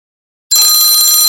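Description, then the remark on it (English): After a brief silence, a timer bell marking the switch of sides in a foam roller stretching workout bursts into loud, continuous ringing, a bright, shrill metallic trill with high overtones that keeps going steadily to the end, with no talking. “All right, coming up in 10 seconds on the bell.”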